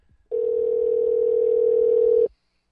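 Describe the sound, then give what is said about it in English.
A steady telephone dial tone at the start of a phone call to Scott Walker by a caller posing as David Koch hums at a single constant pitch for about two seconds, loud and unbroken, then cuts off abruptly into silence. “Here's a little bit the beginning of that phone call.”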